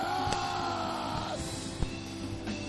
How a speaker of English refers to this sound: Some of you, the way you are shouting, it's like you have still been dominated.